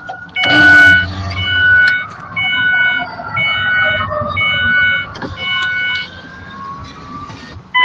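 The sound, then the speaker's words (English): Electronic alarms sound in a steady repeating pattern of high, piercing tones, fairly loud and continuous, with a low rumble underneath and no clear talking. “I don't know if you can hear the alarms”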